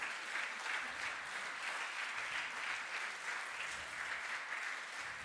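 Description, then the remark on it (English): Steady applause for a family from a crowd of many people at a church service after a prayer, dense continuous clapping at an even level throughout, with no voices standing out. “Should we give them a round of applause?”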